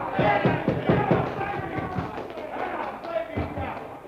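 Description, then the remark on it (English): A bar crowd in Boston erupts in uproar watching the seventh game of the World Series, Yankees versus the Braves, on television: many voices shout and cheer at once, loud and sustained, with a few dull thumps early on. “That uproar came from right the other end of the bar, from the crowd watching television.”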